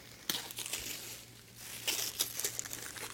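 Crinkling and rustling of wrapping as a gift package, which turns out to hold a brand-new iPod Touch, is torn open, with irregular bursts of crisp crackles that swell and fade over a steady low hum, no voices.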